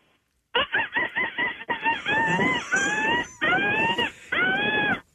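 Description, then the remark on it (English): A woman imitates a seagull call over the phone: a quick run of short, yelping notes followed by three or four longer, loud, high-pitched wailing cries that rise and fall. “Are you known for your seagull impression?”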